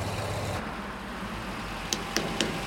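Steady wind and road rumble from riding in the open back of a moving shared truck in Haiti that carries about a dozen people, with three quick, sharp knocks near the end from tapping the roof to signal a stop.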